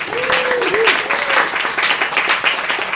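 Steady applause from an audience for the two bar staff fills the whole stretch, dense and crackling, with a few cheers or whoops rising briefly through the clapping.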